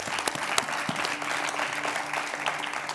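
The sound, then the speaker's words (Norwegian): Sustained audience applause at a meeting, a dense crackle of many hands clapping steadily for the full stretch, fairly loud, with a faint low hum beneath. “La oss gi Jan og Inger og TV Vision en stor applaus.”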